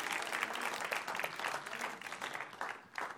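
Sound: audience clapping hands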